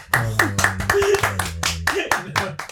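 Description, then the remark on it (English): Steady, rhythmic clapping for a guest, roughly four sharp claps per second, keeps going over voices talking and whooping in the background, all at a lively, fairly loud level. “Can we get a round of applause for our guest, please?”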